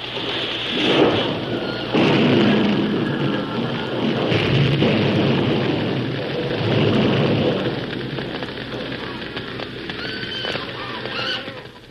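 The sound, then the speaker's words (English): The flaming roof of a burning farm building crashing down as livestock are driven out: a loud, sustained roar of crackling fire with heavy rumbling crashes and debris clatter rolling on throughout, with no voices. “looked up to see the flaming roof about to crash upon them”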